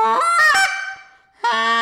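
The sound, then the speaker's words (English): A goose call imitates a Canada goose's rough, clear cluck: a raspy, rough honk breaking into a clear tone that trails off, then a sharp second honk cuts in. No talking. “So a goose, a Canada goose, whether it's a lesser or a 12 pounder, goes rough, clear cluck.”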